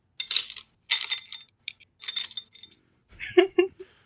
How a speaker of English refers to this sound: It's so funny to hear just the glass jiggling with all the dice.